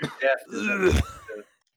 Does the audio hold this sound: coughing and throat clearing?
yes